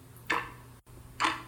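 Two crisp clock ticks about a second apart, sharp, from a wall clock whose hands are stopped at 11:11 and whose battery compartment is empty, with a faint low hum beneath them and nothing else going on.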